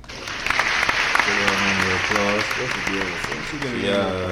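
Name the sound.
applause sound effect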